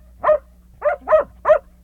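A dog barks four times in quick, slightly uneven succession, fairly loud, with no talking, just a faint low hum in the background.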